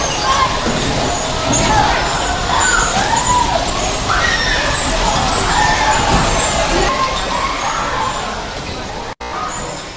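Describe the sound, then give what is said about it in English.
A noisy bumper car ride: a steady electric hum and rumble of cars, scattered thuds of collisions, and a dense crowd babble throughout, fading slightly near the end before a sudden cut. “All right, we are back from bumper cars.”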